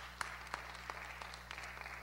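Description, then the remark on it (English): Scattered, quiet applause from an audience for a woman who has just spoken: a handful of sharp, irregular claps spread over about two seconds over a steady low electrical hum, with no talking. “Let's clap for her.”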